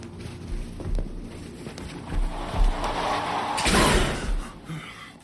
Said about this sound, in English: I had the feeling that he wanted to say something, but before he could, there was a noise from beside us, a loud slamming.